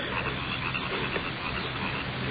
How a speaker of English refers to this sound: Crickets are getting on my nerves.